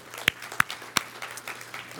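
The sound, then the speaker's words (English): A few scattered hand claps ring out, three sharp ones close together near the start, followed by softer, sparser clapping as the applause trails off. No one speaks. The audience is applauding the Bridge Kids team of leaders and volunteers. “Can we just give them a hand clap too?”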